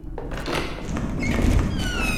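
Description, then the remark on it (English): A door is pushed wider open with a continuous scraping rumble and a rising squeaky creak toward the end, lasting about two seconds with no talking. “I think the door can open now.”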